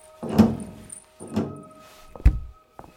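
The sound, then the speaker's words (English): A door closes with a couple of heavy thuds, followed by a sharp knock and a small metallic click as the door is locked. No voices, just the solid sounds of the door. “You seem to have locked the door.”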